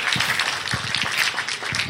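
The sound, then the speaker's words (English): A round of applause from a crowd honoring a woman who does 29 appointments: dense, steady crackle of many overlapping hand claps at an even, fairly loud level throughout, with no voices. “I want to give her a round of applause for that.”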